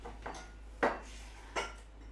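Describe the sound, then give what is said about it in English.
Coffee cups used as shot glasses clink together three times as they are gathered from on top of a coffee machine in a studio, short sharp knocks spaced unevenly, the middle and last ones loudest, over a faint low hum. “I think all that we got is these coffee cup shot glasses over here on top of the coffee machine.”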